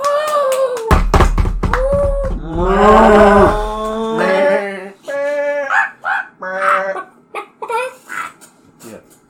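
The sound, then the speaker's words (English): Several farm animals call out in a noisy, excited chorus: cows moo loudly in long, drawn-out calls, overlapping with sharp dog-like barks and other animal cries, then fading into shorter bursts. “And all the you hear all the animals cheering.”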